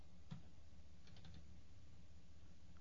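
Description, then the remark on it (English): Sparse, soft keystrokes on a computer keyboard: a lone click, then a quick little burst of taps, set against a low steady room hum with no one talking. “How are you typing?”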